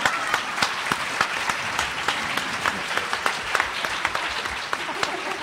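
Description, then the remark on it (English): A crowd claps steadily and fairly loudly, the dense patter of many hands filling the whole stretch with sharp individual claps popping out of the wash. “I'd like to give all the hairless monkeys a big round of applause.”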